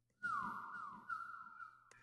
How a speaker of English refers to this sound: A distant tweeting sound, like a songbird, but not quite, came from inside.